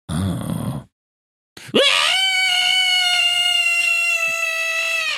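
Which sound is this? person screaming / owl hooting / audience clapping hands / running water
person screaming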